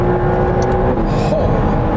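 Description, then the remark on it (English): A loud, continuous roar from a hybrid supercar engine under acceleration, the engine approaching 200 horsepower per liter and combined with an electric motor of about 94 horsepower, thick and low with a steady droning tone running through it for about two seconds, with no one talking. “It's only 94 horsepower or so from the electric motor itself, but combined with this engine, which is now approaching 200 horsepower per liter.”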